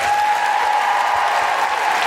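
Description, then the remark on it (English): Sustained audience applause for the interpreters at the Southbank Centre, a dense, even wash of many hands clapping at steady loudness throughout, with no voices standing out. “Big round of applause for our phenomenal interpreters.”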